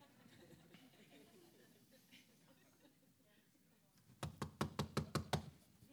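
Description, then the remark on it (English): A quick burst of about seven loud, sharp knocks on a door in a steady rhythm, arriving after several seconds of low background murmur; the knocking is Peter at the door of a house where a prayer meeting is being held. “And then they went and opened the door and they're astonished because the very thing they was praying for was knocking on the door.”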